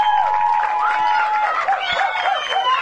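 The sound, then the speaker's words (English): A St Kilda Sharks football crowd roars and cheers after Garner's goal against Melbourne Uni, a steady wall of loud yelling with shrill whistles and rising shouts cutting through, no break in the noise. “Sharks crowd going bananas.”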